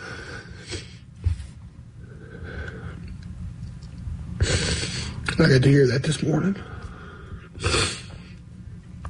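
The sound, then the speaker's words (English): A man sniffles and snorts wetly several times while crying, with shaky, strained sobbing sounds in between. Fairly loud, mixed with a few spoken words. “Dude, blow your nose.”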